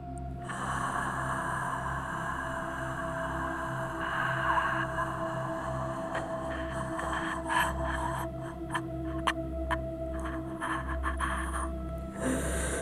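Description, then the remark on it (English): A slow, deep breath drawn in through the nose, then released out through the mouth as part of a breathing exercise, airy over a steady low background hum, with no talking. “First, take a deep breath in through your nose and out through your mouth with me.”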